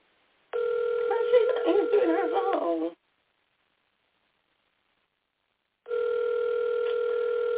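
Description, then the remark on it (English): A telephone rings over the line, two long steady ring tones separated by a few seconds of silence, with a faint voice briefly audible under the first ring and nobody picking up. “Okay, she don't want to answer her phone.”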